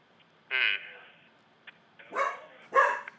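Three short, sharp barks from a dog, the first isolated and the last two closer together, fairly loud against a quiet background.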